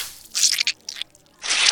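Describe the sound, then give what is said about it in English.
A supersuit snakes onto Mrs. Work's body after she slides its control, with squelchy slithering: one crinkly surge with quick flutters, a short lull, then a second sustained hissing wrap. No voices. “And it snakes onto her body.”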